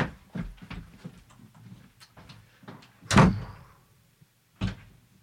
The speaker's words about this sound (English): Go outside and shut the door.